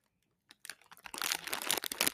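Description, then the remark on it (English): A bag of crunchy Ruffles potato chips crinkles and rustles for ASMR, starting with a few sharp crackles, then building into a dense, loud, continuous crinkling with no talking. “ASMR with a bag of cheese. Now you ruffles. Got a crunchy chip. I love that sound.”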